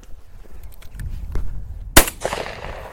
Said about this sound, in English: Dead bird. All right, so we just hooked that bird up. I shot him. What'd you think? 25 yards? Yeah, about 25.